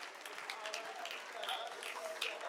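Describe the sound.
A church audience claps its hands during a prayer for healing, a steady, dense patter of applause, fairly soft, with faint voices mixed in throughout.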